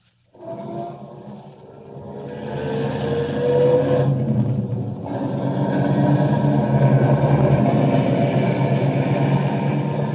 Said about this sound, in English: Start up the car.